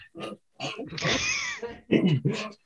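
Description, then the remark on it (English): A female dog named Luna, who wants to play, makes a string of odd, snorting grunts and pig-like snuffles, with a longer raspy, wheezing stretch in the middle, fairly loud and with no talking over it. “Is the dog having a seizure?”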